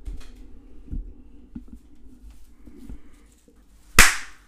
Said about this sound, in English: Thank you for clapping into my microphone for me. Yeah. Now I can sync it when we're done.